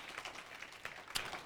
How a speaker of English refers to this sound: Want to give him a clap.